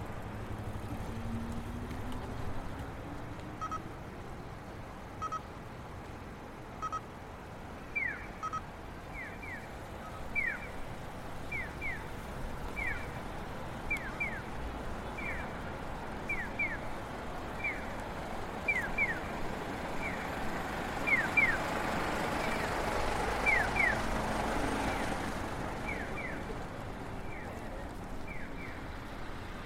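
Steady roar of traffic on a busy road beside a Lawson station, with vehicles rumbling past and a louder swell near the end, while a series of quick, high-pitched electronic chirps repeats at a regular pace over it.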